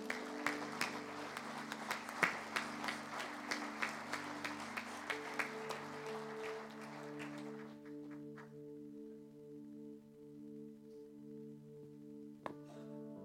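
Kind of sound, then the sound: crowd, audience clapping hands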